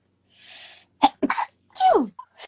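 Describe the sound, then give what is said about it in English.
A sneeze during a guided Reiki meditation session: a breathy intake, then sharp bursts of air and a last explosive blast that trails off in a falling, voiced tone. Nobody speaks. “Bless you.”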